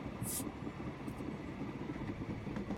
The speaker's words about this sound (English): But the train comes to a halt, and as soon as you stop, you can hear the twisting of metal. Ooh. And that there is a large shake as that car that was damaged gets crumpled by the weight of the cars behind